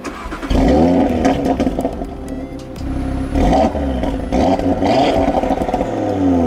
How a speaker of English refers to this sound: This is the point when performance cars pull away from mere A to B vehicles. From the engine note onwards, one thing is clear. The Audi RS3 is not just a vehicle. It is a work of art, engineered with pride and the weight of history in its design.